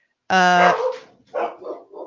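large dog barking

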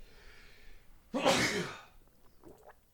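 sneeze

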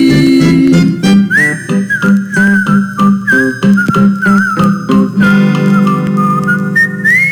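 whistled melody

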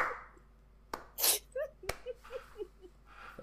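slow sarcastic hand clapping

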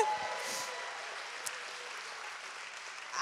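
audience applause

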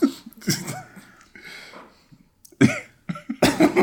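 hard coughing fit

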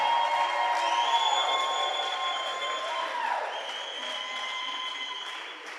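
audience clapping and shouting

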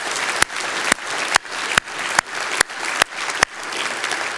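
audience applause

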